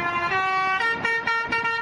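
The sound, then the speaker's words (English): A loud vehicle horn on the road plays a bouncy melody, honking a quick run of sustained, brassy notes that step up and down in pitch, with no voices. “Those honking horns are taking over the roadways.”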